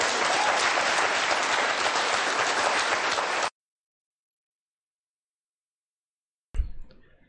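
A burst of audience applause, dense and steady clapping at full volume for a few seconds, then it cuts off abruptly into silence before a single low thump near the end.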